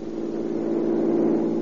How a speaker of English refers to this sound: Look at that madman weaving through the traffic. He's as good as got a ticket right now.